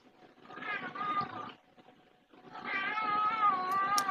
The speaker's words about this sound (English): My cat's got something to say about that.